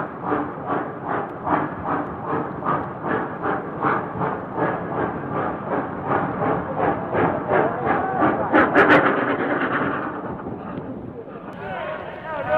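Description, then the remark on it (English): A large crowd of troops lining the rails of a ship at a wharf shouts and cheers continuously, greeting a train arriving for another troop transport; their voices swell in steady rhythmic waves, with the train rumbling and chugging beneath the noise. “Let's switch over to our deck microphone for a moment and listen to them greeting a train which arrives for our other transport.”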